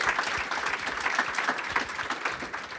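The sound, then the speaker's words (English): A crowd applauds steadily, many hands clapping in a dense, continuous patter that holds at an even, moderate loudness throughout, with no voices standing out. “We're gonna go into our some applause.”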